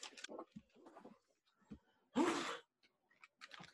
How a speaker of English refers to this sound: Did you just blow on the bug? No, I just sneezed.